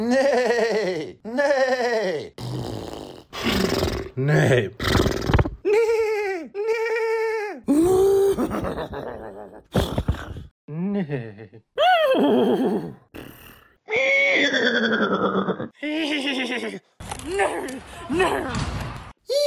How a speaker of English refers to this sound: I almost forgot. that horse was speaking at the beginning. Nay, nay.